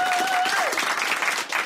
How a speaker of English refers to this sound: The only lingering effect is occasional pity applause.